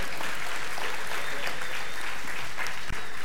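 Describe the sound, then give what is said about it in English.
An audience at a church service on a Resurrection Weekend morning claps steadily for the children, kindergarten through fifth grade: a dense wash of many hands applauding at an even loudness for a few seconds, with no voices standing out. “Y'all give our kids a good hand clap of praise this morning.”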